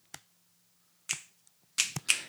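Several sharp finger snaps ring out from someone just taught how to snap, an isolated one first, then a pause before a quick cluster of three or four crisp snaps near the end, with no talking.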